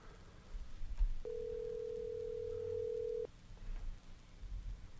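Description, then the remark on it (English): One steady, mid-pitched ringback tone from an outgoing phone call sounds for about two seconds, then cuts off, leaving low background noise before and after. “I'm giving Cole a call now.”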